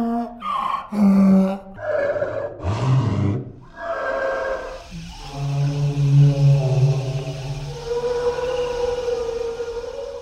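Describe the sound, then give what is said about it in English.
Deep, drawn-out braying calls rise and fall in long harmonic swoops: hawing donkeys slowed down by sound designers to create the call of the gentle, long-necked brachiosaurus dinosaurs. The result is a low, mournful, siren-like creature song that swells loudly and then sustains in steady tones. “To create their sound, the designers took hawing donkeys, and they slowed it down until it became a graceful song.”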